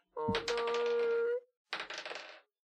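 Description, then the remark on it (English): A loud clatter of many dice being rolled, tumbling across a surface, then a brief pause and a second shorter burst of rattling clicks, with a faint ringing tone under the first. “Sometimes I think he only rolls one dice, but then rolls 17 others just to confuse us.”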